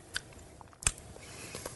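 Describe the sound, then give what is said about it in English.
Someone sips a thick Zupa organic carrot coconut lime soup: a couple of short, wet slurping clicks over a quiet, muffled background, with no talking. “I took a sip.”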